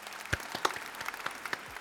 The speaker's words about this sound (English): Why don't we go ahead and clap that out?